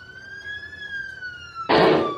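siren sound effect played

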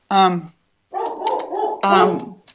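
dog barking

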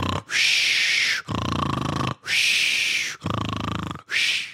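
snoring sound effect

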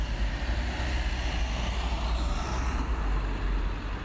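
city traffic

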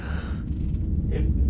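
yawn

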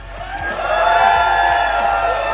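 audience cheering

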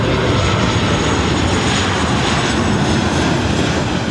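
airplane flying overhead

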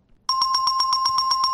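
bell ringing

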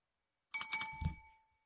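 loud bell ringing

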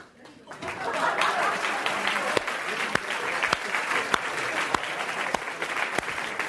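audience round of applause

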